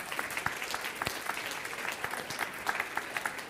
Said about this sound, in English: Yeah, we're so happy to have you back. Actually, round of applause for these guys.